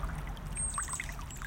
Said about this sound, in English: We're listening to the creek here, the water.